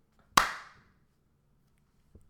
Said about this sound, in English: But, like, that East German guy, he started that slow clap, but he had a look of rage.